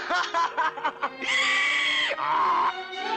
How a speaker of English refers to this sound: You laugh like a donkey.